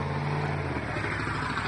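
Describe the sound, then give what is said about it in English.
A car engine rumbles, a steady, loud motor drone whose pitch shifts partway through as the vehicle moves past, with no voices present. “He just put on a burst of speed like he was going to chase the car.”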